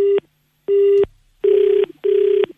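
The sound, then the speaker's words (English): A telephone line rings out in four loud, buzzy electronic tone bursts separated by short silences, the later ones longer and grittier, with no voices. “I'm going to phone him right now and tell him that.”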